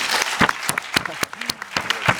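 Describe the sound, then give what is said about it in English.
A brief, scattered round of applause: sharp, irregular claps from what sounds like a small group, moderately loud, with no voices over them. “I don't think it deserves a round of applause.”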